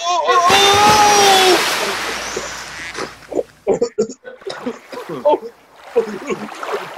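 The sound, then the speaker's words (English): A loud, sudden splash as a person falls from a boat into water, with a high shriek over the churning, then agitated voices and sloshing water for several seconds. “I can't swim, Broad, I'm drowning.”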